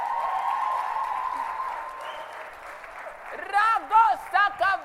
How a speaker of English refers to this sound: Come, my daughter. Clap for her. She's feeling shy.